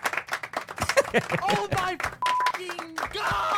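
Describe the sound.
A burst of canned applause and cheering plays from a soundboard, mixed with overlapping voices and a few short electronic tones, dense and loud throughout.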